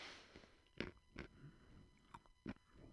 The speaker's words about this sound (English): Because I'm just going to keep chewing this ice.